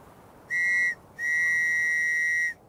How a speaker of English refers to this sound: With whistles and cries, he drew the attention of the search team.